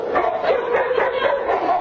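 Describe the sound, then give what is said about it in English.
Several dogs at a doggy daycare bark and yip excitedly in quick, overlapping bursts as they swarm a dog trainer, loud, with a few high whimpering yelps mixed in throughout. “It's pure doggy affection.”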